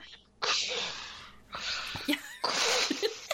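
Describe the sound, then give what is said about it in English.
A voice imitates heavy breathing through a respirator mask: three loud, hissing breaths, each about a second long, at a steady slow rhythm. “Like, he is one heartbeat away from coming into her apartment where he refuses to live with her with a full, like, mask on, like with the breathing thing that you were talking about.”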